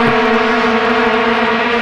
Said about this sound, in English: this is vuvuzelas and or air horns, your choice. Editor's choice.